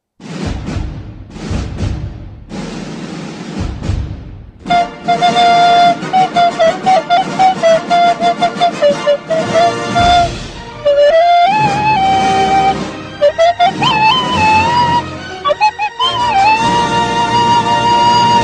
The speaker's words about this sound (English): Oh, it's good to have that music back. I gotta buy one of those slide whistles.